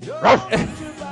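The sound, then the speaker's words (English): A dog barks twice in quick succession, fairly loud, with a faint background hum in between and no talking. “Come on, good dog.”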